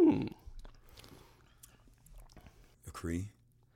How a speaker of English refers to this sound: So she's taking another sip, ladies and gentlemen. It's really fucking strong. It's a strong drink.